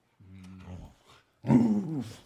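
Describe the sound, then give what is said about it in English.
A female husky dog, Kuna, gives two low growling vocalizations: a steady rumble first, then a louder, more voiced growl after a short pause, with no talking. “Like, she doesn't howl like most huskies.”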